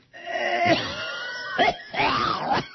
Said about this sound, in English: Boy, I'm really, this cough is coming back bad.